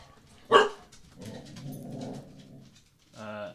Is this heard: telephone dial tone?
no